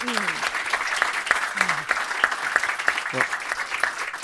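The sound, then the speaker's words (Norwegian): An audience clapping steadily, a dense, continuous patter of applause at moderate loudness, with a few voices calling out faintly underneath. “Det verdt en applaus.”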